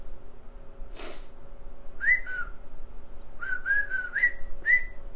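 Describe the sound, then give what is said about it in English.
A short burst of breath comes first, then someone whistles a bright, clear melody of a film theme tune in quick, rhythmic phrases of rising and falling notes, with no talking. “Is it for the Bridge on the River Kwai?”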